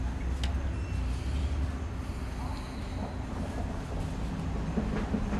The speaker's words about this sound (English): We're not in a studio, everybody. I told you where we are. A bus just went by, an actual New Jersey Transit bus.